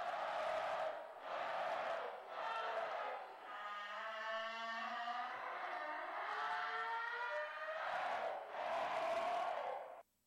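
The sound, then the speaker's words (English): An eerie human-like scream recorded at 3:12 a.m. and amplified 20 times: a loud, drawn-out wailing cry with a raspy, grinding edge, rising in harsh bursts and sustaining a slowly wavering tone for about ten seconds, with no talking. “So, it sounds like an old heavy metal door being closed really slowly, and then someone like amplified that and made it scary.”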